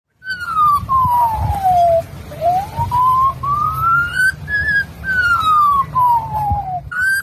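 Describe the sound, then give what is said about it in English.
An Australian magpie imitates an emergency siren during a bushfire, its clear whistled tone sliding slowly down, up, and down again in a steady wail, loud over a low, rough background rumble. “But it's an Australian magpie mimicking an emergency siren during the bushfire.”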